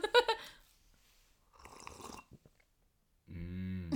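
A wet slurp of hot peppermint tea, a noisy sucking sip lasting under a second, followed by a low, satisfied voiced sigh. A brief vocal sound comes before it.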